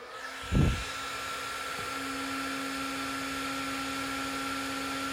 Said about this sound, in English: I'm going to turn on the terahertz blower and blow the water from the outside of the cup.